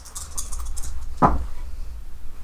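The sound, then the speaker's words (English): Metal dice clatter with faint, quick rattling clicks, then land with one sharp, bright clack about halfway through, rolling an 8. A low steady hum runs underneath, and nobody speaks. “I'm going to try my metal dice again, guys.”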